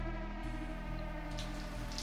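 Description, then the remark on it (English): Rain patters steadily and softly in London, with occasional brighter splashes, over a low sustained tonal hum that continues throughout. No one speaks. “It's raining in London.”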